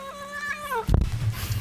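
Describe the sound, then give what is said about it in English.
A cat lets out one drawn-out, falling meow after being teased, then a sudden thump and a burst of rustling noise follow as the cat bites someone. “cat just bit the fuck out of him.”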